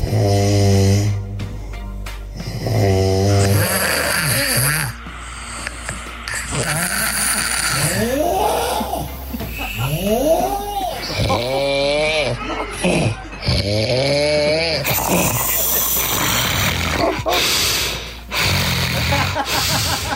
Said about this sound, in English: I feel so sorry for all the people who've had to listen to this snore. And we decided a snore is like a fingerprint. They sound so completely different. We've had some doozies.